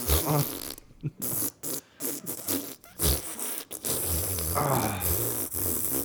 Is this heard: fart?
yes